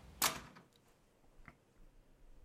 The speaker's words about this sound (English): Okay, close the door. Close the door.